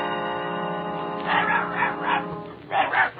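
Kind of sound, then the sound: animal, small dog barking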